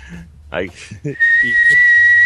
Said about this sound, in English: I can't do it, dude. I can't whistle on command.